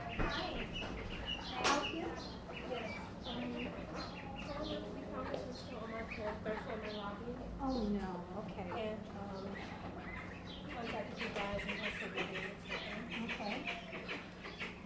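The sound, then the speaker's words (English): Chickens and ducks, carried in by arriving visitors, call continuously for about fifteen seconds, a busy, overlapping chorus of clucks and quacks over a steady low background hum. “A chicken, it looks like. And ducks in the way.”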